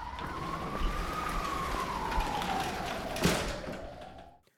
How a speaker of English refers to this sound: Someone else had already called emergency services. Sirens could be heard.